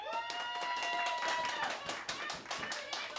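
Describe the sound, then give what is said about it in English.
An audience claps hands to vote on whether to have a traditional Thanksgiving, a quick, dense patter of sharp claps lasting about three seconds, with some voices calling out over the clapping. “So, clap your hands if we should have a traditional Thanksgiving.”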